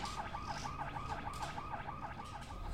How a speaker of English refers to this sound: The CO rushes off, leaving Gailey's lifeless body and alarms echoing throughout the building in his wake.